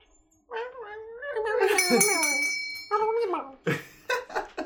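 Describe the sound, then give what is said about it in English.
A single bell strike rings out and hangs in the air with a steady metallic shimmer, while voices make loud, warbling gargle-like noises over and around it. “Ring that bell on your way out.”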